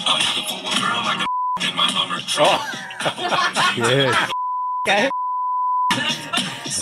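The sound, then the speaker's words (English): Loud music with explicitly worded singing is cut three times by a steady, high censor bleep: a brief one early on, then two longer tones close together before the song resumes. “We might have to beep some of this out.”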